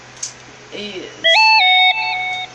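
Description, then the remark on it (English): A phone notification chime plays: a short melody of clear, pure electronic tones that steps up and then settles, loud and lasting over a second, preceded by a brief murmur of voice. “My phone just made a notification sound.”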